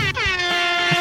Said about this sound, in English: So my day is already perfect because we just used the motherfucking air horn.